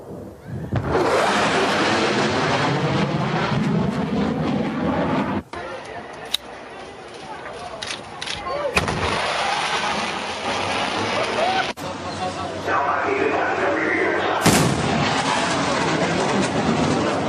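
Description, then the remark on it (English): A plane roars loudly overhead as it causes a sonic boom, a dense, rushing blast with sweeping tones that shifts abruptly a few times and stays loud throughout. “So this is a plane causing a sonic boom, just so you can hear for reference.”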